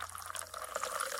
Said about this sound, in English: Then, pour 3 ounces of tonic, so bubbly, Then pour 3 ounces of tonic.